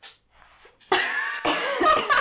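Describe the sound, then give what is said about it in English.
A couple of harsh, forceful, painful coughs from a person getting over a cold, the second following quickly after the first, with a brief quiet moment before them. “Sorry, I just had to cough, but it hurt.”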